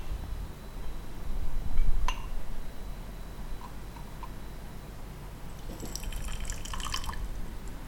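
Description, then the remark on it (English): Boiling water is poured over small teacups and tea utensils to clean them, with a single sharp clink early on, then a stretch of light splashing and dripping. Fairly quiet, with no talking. “started by pouring some boiling water over the teacups and utensils just to clean them.”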